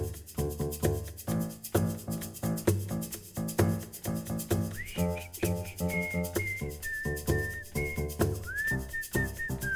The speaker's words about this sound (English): So on every song we tried good intros, and then I mean that melody is quite strong, I guess. So was no idea like making up a new one for the intro. So we just need another sound for the intro, and that was the whistling bit.